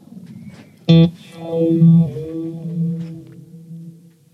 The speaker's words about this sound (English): The feedback. It's almost like it kind of reverbs off everywhere, bounces everywhere, doesn't it? Yeah, it kind of gets turns itself inside out kind of thing.